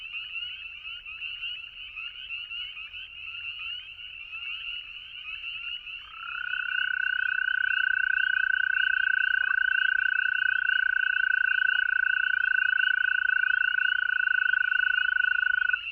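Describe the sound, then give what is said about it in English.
A dense chorus of spring peepers rings steadily throughout, joined partway through by an American toad's long, unbroken, dreamlike musical trill, the first American toad of the season, that holds loud until the end. “Well, how about my first American toad of the season, giving its dreamlike trill against a chorus of spring peepers.”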